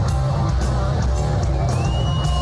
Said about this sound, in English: All right, let me hear you clap a little harder so I don't have to. Come on. You can do better than that.